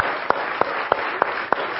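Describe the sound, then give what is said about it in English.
A crowd gives volunteers a round of applause, a dense steady patter of many hands, with a few sharper claps punching through at an even, regular beat. No one speaks. “And while we give our splendid volunteers another round of applause for being heroes.”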